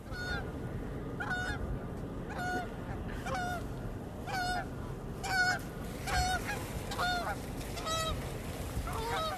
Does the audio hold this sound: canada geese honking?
yes